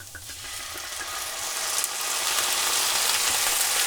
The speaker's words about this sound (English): I'm letting the pan heat up a little bit because when I dump my vermouth in there, I want it to start sizzling right away. Here goes with the vermouth.